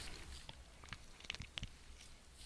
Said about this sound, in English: Pardon me while I have a little sip here.